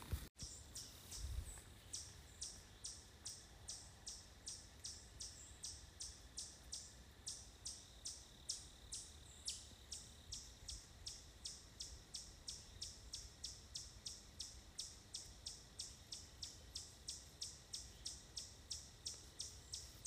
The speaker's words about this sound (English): That's what I thought was a bird, but now I think it's a chipmunk.